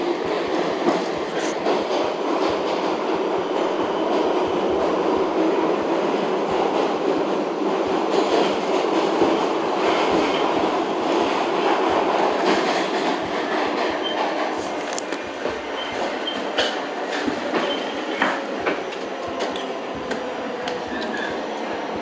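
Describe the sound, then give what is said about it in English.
An AC subway train rumbles steadily along the tracks, a dense continuous roar with faint rhythmic clacking and occasional sharp metallic ticks, loud throughout with no talking. “reporting live from the AC train on Spotify and getting in the storm.”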